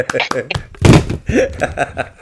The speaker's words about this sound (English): I just knocked the phone off.